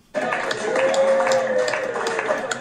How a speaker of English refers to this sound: That's the applause when he got off stage.